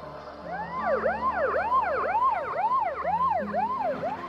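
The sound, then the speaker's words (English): An ambulance siren yelps in fast, rising-and-falling sweeps as the ambulance drives off with its lights on, repeating steadily and fairly loud over a low rumble of traffic, with no one speaking. “So did the ambulance find the body? Because now they're leaving with the lights on.”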